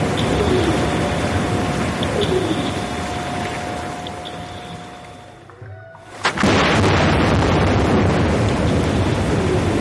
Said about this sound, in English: We're going to play a little bit of whale song and then we'll let you hear what the seismic blasts sound like if you were underwater.